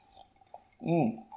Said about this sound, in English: Having a little sip.